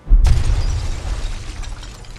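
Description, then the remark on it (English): A huge creature, the Veskinoth, slams into the ground with one sudden, loud crash, followed by a deep rumbling roar and scattering debris as machines rain down, slowly fading. No voices. “You watch as the Veskinoth comes crashing down towards the ground a little bit away from you, and these machines just rain down around.”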